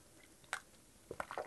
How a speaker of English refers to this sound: Just a bit of a sip of the coffee.